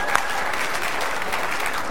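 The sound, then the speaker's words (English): An audience applauds steadily, a dense wash of many hands clapping at an even, fairly loud level throughout, with no break in the sound. “It's so good to clap.”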